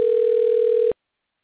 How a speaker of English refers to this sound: Can you hear ringing going on? Yes, it sounds like a phone is ringing. Okay, I don't know what that is. Okay, they hung up.